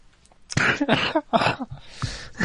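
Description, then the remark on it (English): A fairly loud fit of coughing: four harsh, breathy bursts in quick succession with brief gaps between them, and no talking. “Okay, you dying over there? Be sure to laugh and cough into the mic.”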